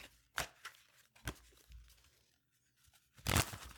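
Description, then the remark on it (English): Papery riffling and crisp snapping bursts of playing cards from the Mindful Reminders card pack being shuffled, a few sharp flicks followed by a louder scattering flurry near the end as the cards are thrown all over the room, fairly quiet, with no voices. “Hear me shuffling the cards.”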